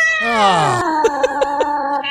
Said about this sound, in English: It was a Walt Disney. Yeah, it was a Disneyland album. Yeah, you know, one of the Disneyland Records albums. Every track was a different scary sound. Cats being the favorite.